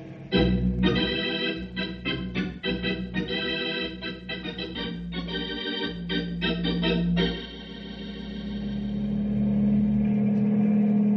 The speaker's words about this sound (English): There, village of Greenbow. It hasn't taken long, has it? Looks like you ought to be able to set the copter down in the village square,